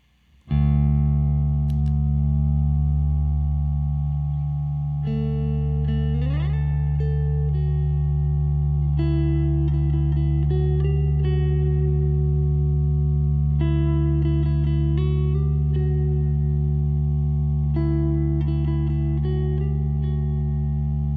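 A steady, droning low note holds unbroken throughout while a higher synthesized melody moves above it in stepping phrases, with a brief pitch slide early on. No talking.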